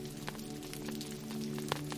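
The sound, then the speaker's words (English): Rain during a storm patters steadily on a camper's canopy above the sleeping nook, scattered drops tapping irregularly over a constant low hum, fairly soft, with no voices. “Rain patters on the canopy above the sleeping nook.”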